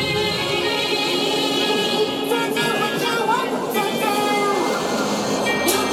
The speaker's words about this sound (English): Hold on, this train going by.